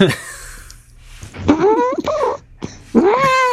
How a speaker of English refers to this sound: There's a cat.